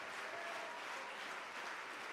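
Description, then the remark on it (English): An audience claps their hands unto the Lord in a dense, sustained burst of applause, many overlapping claps blending into a steady, bright wash with no talking. “Would you clap your hands unto the Lord right now?”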